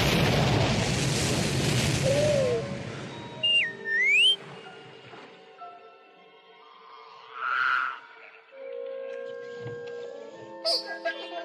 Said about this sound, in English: Thick fog blankets the planet. Just hang on. I'm going to start the landing cycle. Rocketing its way through dense vegetation, it plunges into the gloomy murkiness of a steaming jungle swamp.